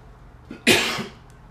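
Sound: coughing fit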